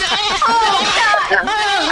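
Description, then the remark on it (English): A goat bleat sound effect plays loudly, a wavering, nasal cry that stutters and trembles for about two seconds without pause. “Hit him with the goat, he says.”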